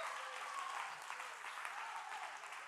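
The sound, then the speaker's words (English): An audience claps their hands together in a dense, steady wash of applause that holds at an even level throughout, with no clear voices above it. “Come on, somebody clap your hands right now.”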